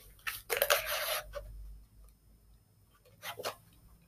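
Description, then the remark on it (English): Someone drinking water: a burst of crinkly, clicking bottle handling early on, a quiet stretch, then another brief rustle near the end, with no talking. “Excuse me, y'all, I need some water.”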